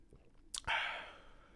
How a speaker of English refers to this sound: Ooh, you ever took a hit? Hold on, watch this. Take a hit and then take a sip.